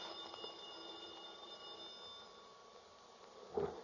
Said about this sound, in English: The phone. No, I'm not going to answer it. Go ahead and answer it, baby. Go on.